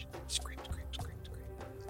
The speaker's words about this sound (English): As you're scraping some of it off, something drips on you from above.